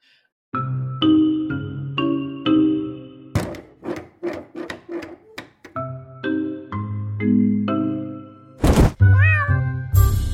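A cat meows repeatedly amid a string of sharp wooden knocks and thumps as it is dragged in, ending in a few louder, wavering meows. No one speaks.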